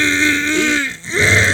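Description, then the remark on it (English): A man clears his throat loudly, a raspy, voiced rumble that pauses briefly and then comes back for a second gravelly push. No words are spoken. “Hold on, let me clear my throat and unsee it.”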